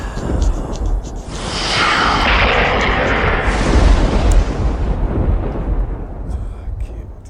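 A loud, rolling thunder crash swells quickly and rumbles on for several seconds, heavy in the low end with a crackling edge, before slowly fading out.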